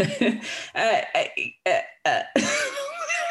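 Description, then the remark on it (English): A person does a throat click to clear a frog in their throat: a quick string of short, rough clicking bursts, about six of them, then a longer, raspy voiced rumble. Fairly loud, with no talking. “Let me do my little click.”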